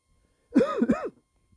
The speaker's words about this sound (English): I apologize for my coughing and if I start having some issues talking. I'm trying to fight this cough, but it's just, it's not going to happen that way.